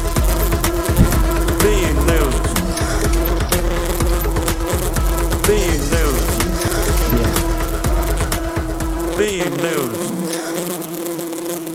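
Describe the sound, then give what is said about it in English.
Loud, steady buzzing of bees fills the whole stretch, a dense droning hum with wavering pitch, continuous, cutting out abruptly near the end. “And now, oh, we're still buzzing.”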